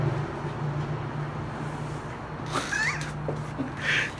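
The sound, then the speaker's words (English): A cat meows twice, a drawn-out wavering cry followed by a shorter higher one, over a steady low hum with no talking. “That cat is attached.”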